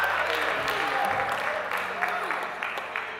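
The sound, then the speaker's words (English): A church audience claps and cheers together in praise of God, a dense, sustained burst of applause mixed with shouting voices, steady and loud for a few seconds. “Now shout and give God a hand clap of praise for that.”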